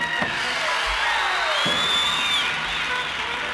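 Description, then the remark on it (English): A crowd applauds and cheers for the steel guitar player, Norman Hamlet, as he is introduced at a country music performance, a steady, dense wash of clapping with high whoops and whistles rising above it for a few seconds. “Would you give a great big round of applause to my steel guitar player, Mr.”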